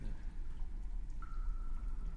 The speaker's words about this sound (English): And all of a sudden, you hear splashing coming from two different directions, both the only directions available.